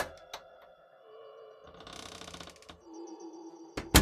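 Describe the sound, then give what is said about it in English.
The side door of a house creaks slowly open with a drawn-out, wavering groan, punctuated by a few sharp clicks and latch rattles, as a boy sneaks into the dark house. Moderately loud, with no voices. “Steve slowly opens the side door and creeps through the kitchen like a stalking cat.”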